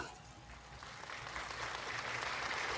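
A canned applause sound effect: dense, steady crowd clapping with no voices, swelling a little louder after the first second and holding for nearly three seconds.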